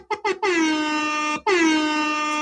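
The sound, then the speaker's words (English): A hip-hop style air horn sound effect: two short quick blasts followed by two long, loud, sustained honks, blaring with a bright, brassy tone and no talking. “Hip-hop air horns to you. Air horns.”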